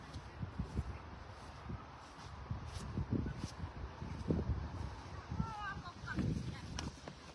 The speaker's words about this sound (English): I'm not sure how windy it is, but this feels like a lot of wind. Wow.